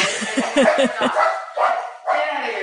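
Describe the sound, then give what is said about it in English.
A dog lets out a quick run of short, sharp barks, then the sound drops into a rougher, noisier stretch with a brief pause near the end. “Your dog is welcome on our show.”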